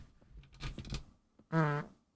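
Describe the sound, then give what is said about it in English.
A fart noise: a rough, sputtering burst followed after a short pause by a louder, buzzy, tonal blast lasting under half a second, with no talking. “Oh, the fart's back.”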